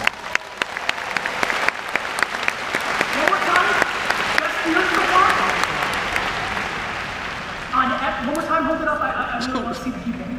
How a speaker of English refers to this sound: how many people are having their best business year ever? Raise your hand. Raise it high. First of all, let's clap it up for them.